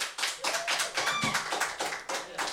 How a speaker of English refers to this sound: All right, number one. We'll judge these by your applause.